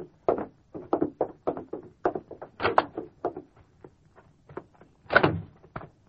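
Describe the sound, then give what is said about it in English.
A back door is opened and closed: a run of light knocks and rattles, then a louder clunk midway and a firm thud near the end as it swings shut. “There's the back door, Doc. Go right out that way.”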